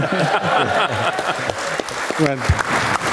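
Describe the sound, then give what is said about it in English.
Steady, dense clapping keeps up for a few seconds as a bright, crackling wash of noise while a man's voice talks over it. “Okay, clap for myself there.”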